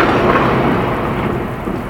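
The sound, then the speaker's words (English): A steady roar of heavy rain from a storm with deep, rumbling thunder underneath, loud and filling the whole stretch without any voices. “Alas, the storm is come again.”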